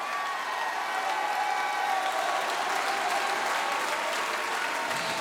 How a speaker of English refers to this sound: The Bible said in Psalm 47, oh, clap your hands, all ye people. That's a great thing to do, but the author didn't stop writing there. He said, clap your hands, all ye people, and shout.